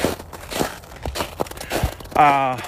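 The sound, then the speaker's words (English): Footsteps crunch through snow in a steady walking rhythm, five or so gritty, crackling steps, before a voice begins speaking at the end. “Crunch, crunch. Crunch, crunch in the snow.”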